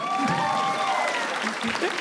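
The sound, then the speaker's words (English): An audience applauds a story with dense, steady clapping that fills the whole two seconds, with some voices faintly mixed into the noise. “People clap them with one hand because they're holding their purse closed with the other one.”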